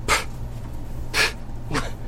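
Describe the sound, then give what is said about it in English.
A voice imitates an animal sniffing and snuffling, like something sniffing its way along and almost sneezing: three short, breathy bursts of air, spaced unevenly, over a low steady hum, with no words spoken. “but it's like something sniffing its way along and then almost sneezing.”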